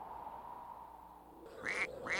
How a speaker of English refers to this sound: Any song that begins with a duck quacking is really cool to me. Yeah, it's not done enough. Also, a duck quacking is pretty hard.